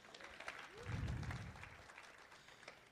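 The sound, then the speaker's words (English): A crowd claps steadily for Jesus, the applause swelling briefly then settling into a sustained patter, with faint voices mixed in. “Yeah, you can clap for Jesus.”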